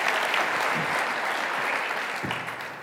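An audience claps in a steady round of applause, a dense wash of many hands patting together at an even, fairly loud level for a few seconds before easing slightly.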